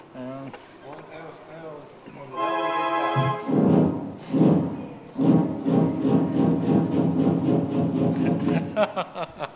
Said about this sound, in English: You got a train. A train.